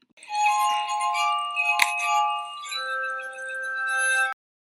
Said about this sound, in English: And here is a publicly available playing of the glass harmonica, which is Benjamin Franklin's original instrument, courtesy of the Toronto Star newspaper online.